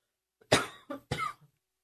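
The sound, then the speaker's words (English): A quick fit of coughing: three harsh, raspy coughs in close succession, with a short rasp trailing off at the end and no talking. “I don't have a cough button.”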